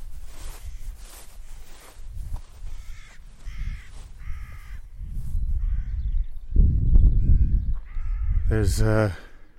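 About seven or eight crows caw harshly and squabble in a field in Southam, fighting over something, their calls overlapping in rapid bursts, with a louder cluster of raucous caws near the end over low rustling and outdoor noise.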